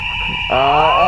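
A gas detector alarm, set off by gas filling a room from a shattered container, blares with a steady, piercing electronic tone, and a harsher, buzzing layered tone kicks in about halfway through the short burst, loud.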